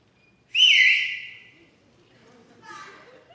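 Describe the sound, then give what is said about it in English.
A loud, piercing human whistle rings out, one sustained high note lasting about a second, followed by a softer, shorter whistled phrase: a father whistling from the porch to call his kids home from the neighborhood for supper. “When I was a kid, we used to play all over the neighborhood, and when it was supper time, my dad would come out on the porch and he would whistle like this.”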